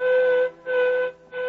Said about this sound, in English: And then one evening as I returned home, I heard the whistle at the mine.